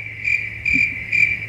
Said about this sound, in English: Is that you know a toad?